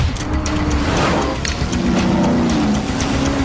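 A loud racing car engine roars steadily, its pitch climbing and shifting as it revs, with a rough, throaty drone filling the whole few seconds and no voices.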